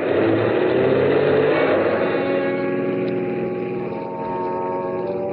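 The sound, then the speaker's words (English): A car engine revs and accelerates as the car is driven back onto the road, its pitch climbing steadily before settling into a sustained drone as the vehicle picks up speed. Loud, with no voices. “After I got the car back onto the road again, I felt like a fool.”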